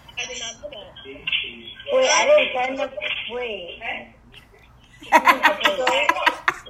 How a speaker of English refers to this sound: Whose house phone is that? Yours?